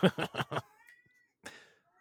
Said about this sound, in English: My cat is crying in the background. I hear. My cat is very upset right now. I don't know why. Probably because I have not given it attention in 3 hours.